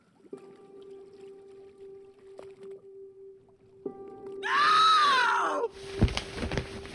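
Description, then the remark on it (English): At night, a woman's sharp, drawn-out cry rises loudly over a low, steady mechanical hum, followed by a burst of rough, splashing noise. “A cry awoke me.”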